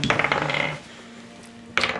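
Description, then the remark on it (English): New dice clatter and tumble across a hard tabletop in a bright rattle that settles, rolled for perception checks in a tabletop role-playing game, then a second burst of clicking starts up after a short quiet pause. “I'm gonna try my new dice.”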